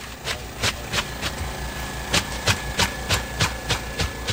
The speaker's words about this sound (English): So here we are. We've made it through the fog and put on these heavy rubber overalls and are in the water with this motorized hydro scraper, which shoots up the clams that are nestled just under the sand.